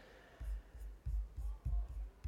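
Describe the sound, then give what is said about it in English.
Keyboard typing a search for song lyrics, a series of soft thudding keystrokes at an uneven pace, about six or seven in quick bursts, with no talking. “You can hear me typing.”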